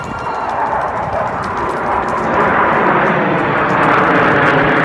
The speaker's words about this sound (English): That's the Blue Angels and Thunderbirds plane teams continuing their tours nationwide. They started out in New York City, Newark, Trenton, Philly. Then they went to D.C., Atlanta, Baltimore, Houston, Dallas, Fort Worth, and New Orleans.